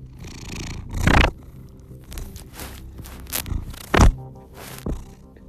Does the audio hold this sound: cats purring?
yes